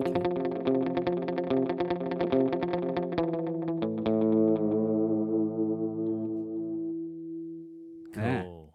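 A twangy electric guitar plays a quick repeated galloping riff drenched in out-of-time multi-head tape echo from the Stomp, the repeats smearing into a shimmering wash that rings out and fades, followed by a brief voice at the end.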